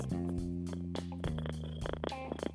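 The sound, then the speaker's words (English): A cat named Jarvis purrs into the microphone, a steady low rumbling hum with soft rhythmic pulses and a few rustling bumps, with no talking. “Hey, Jarvis, purr in the mic.”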